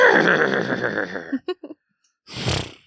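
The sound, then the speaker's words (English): A person's voice imitates a horse's whinny, a long wavering neigh followed by a few short sputtering bursts, a pause, then a breathy snort-like exhale, all fairly loud. “I pretend to be a horse certain times.”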